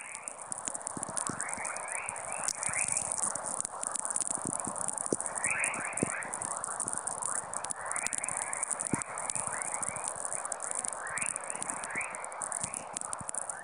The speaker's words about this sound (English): The chorus wave is actually so-called chorus because when you convert it to sound, it resembles the twittering of birds in the dawn chorus. And you have a beautiful cacophony, all kinds of variations. So these waves, every time they sound different.